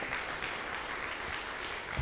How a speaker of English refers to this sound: Can we applaud the Lord Jesus Christ on that, guys?